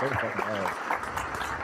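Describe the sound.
A short burst of clapping, a dense, steady patter of applause running throughout, with a voice talking over it at the start before the clapping carries on alone.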